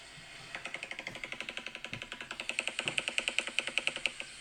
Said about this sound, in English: Oh yeah, that's the noise that shoebill bird makes. Like it sounds like me on the toilet.